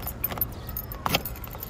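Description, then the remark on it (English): Car keys jangle briefly, then a sharp metallic click and rattle as the key slides into a car's ignition, over a low steady rumble. A woman in the driver's seat is putting the key in. “She unlocked the car, slid into the driver's seat, clicked my door unlocked, and put the key into the ignition.”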